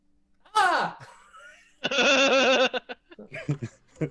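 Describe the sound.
A person imitates a gnome's scream: a sharp, high-pitched shriek that slides downward, then a longer, loud, wavering wail, followed by a few brief vocal noises.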